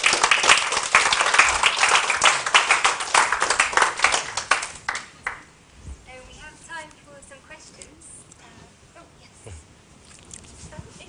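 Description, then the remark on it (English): An audience applauds with a dense, loud rush of many overlapping claps that tapers off after about five seconds, followed by faint voices talking. “And thanks to the other for our clapping and for doing our timing competition.”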